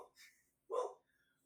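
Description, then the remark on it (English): A dog lets out one short, sharp bark after a brief faint breathy sound, then everything goes quiet. No one speaks. “The joys of having a dog, everybody.”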